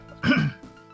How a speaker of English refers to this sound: Do it as though you didn't cough in the middle of that. Just act like the song ended right now for a nice clean edit point.